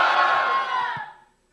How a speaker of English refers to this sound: Saints, can somebody yell a hallelujah if you... Hallelujah!